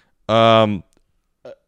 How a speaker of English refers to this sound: Little baby burp.